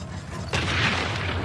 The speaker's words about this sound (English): That ambulance blew up midair.